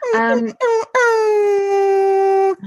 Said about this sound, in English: Yeah, the dog just making that silly noise. Sorry.